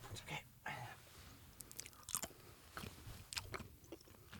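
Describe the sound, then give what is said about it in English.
Someone chewing Good & Plenty candy-coated licorice, a steady run of crisp, crunchy bites and grinding chews in irregular bursts, with no talking. “Man, these Good and Plenty's. They are good and plenty.”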